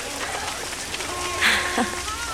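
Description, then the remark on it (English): Steady rain hisses continuously at moderate loudness, with faint murmuring voices and a brief brighter splash or chirp partway through. “Everyone's trying to get out of the rain.”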